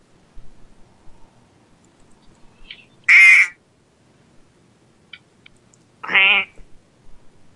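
A duck quacks twice, two loud, raspy calls about three seconds apart, with only faint background noise in between and no talking.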